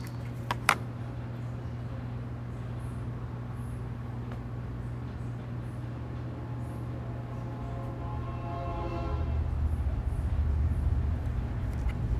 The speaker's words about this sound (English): Is that a real train? Yes.